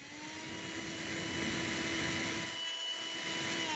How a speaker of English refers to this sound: It's a vacuum cleaner because they suck.